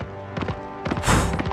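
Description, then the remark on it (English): Horse hooves thud against a hillside in a short run of dull, muffled impacts, with a steady tonal hum underneath and a brief louder, rushing swell midway through. “You hear the beating of wings through your closed eyes, Tira, and the thud of hooves on the hillside.”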